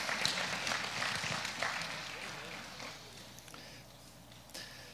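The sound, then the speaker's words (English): An audience claps for Jesus together in a dense burst of applause that is loudest at the start and slowly fades, with a few scattered claps lingering at the end. “Someone give Jesus a clap.”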